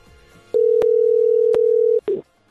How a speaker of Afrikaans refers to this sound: As jou foon lui, sal ek vir aanbeveel, jy tel hem op. Hier is jou kans.